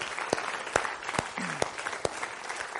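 A crowd at G-Kids Camp applauding steadily in celebration, a dense wash of clapping with a few sharper individual claps standing out, moderately loud.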